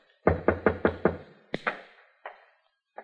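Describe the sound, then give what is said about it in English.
Five quick, evenly spaced knocks on a wooden door, the Commodore knocking at the speaker's upstairs door, followed by two heavier raps and a few faint thuds. Clear, with no voices. “I went upstairs, opened a bottle, and waited for your knock on my door, Commodore.”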